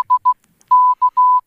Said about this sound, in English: Is that PBAA 89.7 in Morse code?